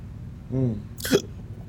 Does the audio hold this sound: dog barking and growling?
no